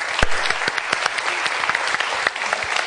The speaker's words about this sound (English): You've now got to do more to get a rousing applause at the end, larger than the one at the beginning.